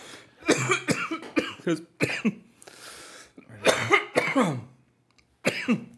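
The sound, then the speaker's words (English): A person coughs repeatedly in harsh bursts, with a short throat-clearing rasp in the middle and a brief pause before a final cough; no talking accompanies it. “Oh my god, because I'm coughing too much.”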